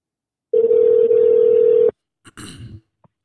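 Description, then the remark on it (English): A single long electronic ringback tone sounds over a phone line while calling a friend, steady and fairly loud for over a second, then stops, followed by a brief clunk and rustle as the line picks up. “So, let's get back into the calling of the friends, man.”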